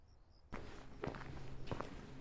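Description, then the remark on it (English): Hurried footsteps of someone quickening their pace to reach a car: a few sharp, quick steps over a steady wash of background noise that begins abruptly after a brief quiet moment with faint high tones. “I quickened my pace, got to my car, and sped off.”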